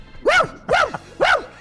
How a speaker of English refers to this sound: Time I bought him a dog, and I just had the dog stand out in the hallway and bark, and then I took it back to the pet store.